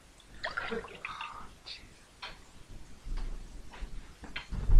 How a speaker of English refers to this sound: God, mate, do everything around here. Oh, make me pour my own drink, orange juice.